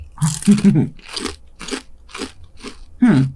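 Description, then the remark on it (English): Crunching on lightly seasoned ranch-flavored tortilla chips, like a Cool Ranch Dorito: about six sharp, crackly chews in a steady rhythm, loud and dry, with a heavier crunch at the start and again near the end. “It's a Dorito with a lot less spice seasoning on it.”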